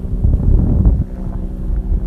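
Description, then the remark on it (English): A loud airplane roars overhead, a deep, steady rumbling drone that fills the low end and barely changes over a couple of seconds, with no talking over it. “It's a loud ass fucking plane.”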